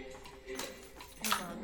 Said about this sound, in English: Drop my keys.